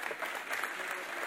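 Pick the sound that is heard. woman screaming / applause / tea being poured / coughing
applause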